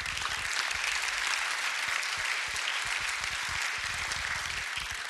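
A church audience at People's Church claps steadily, a dense, continuous wash of many hands sustained for several seconds at an even, fairly loud level, with no voices standing out.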